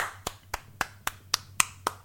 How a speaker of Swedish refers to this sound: Kan vi liksom klappa en applåd i ring på något sätt? Så ja, om du rör... Lyssna här, jag vet inte om min mic klarar att plocka upp det, men...